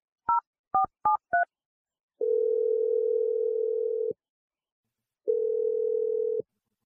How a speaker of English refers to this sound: Let's just dial her phone number and see what she has to say. All right, here we go.